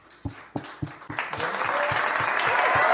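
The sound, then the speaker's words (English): A handful of separate claps quickly swell into dense, sustained applause from a crowd in a room, applauding everybody who voted, growing louder and steadier through to the end, with no talking over it. “Applause for everybody who voted real quick.”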